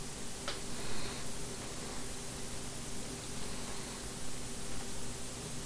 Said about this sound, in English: A little static. Alright, I can do something to fix that. But it's not terrible.